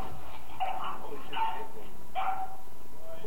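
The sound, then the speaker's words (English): A dog in a video, being punched in the face by a caged monkey, lets out three short, evenly spaced whimpering barks, high-pitched and whiny, heard at moderate volume over a faint background hum. “Alright, so right now we are watching a video of a caged monkey punching a dog in the face.”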